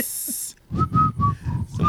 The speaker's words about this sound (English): Somebody's nose breathing. I mean, whistling.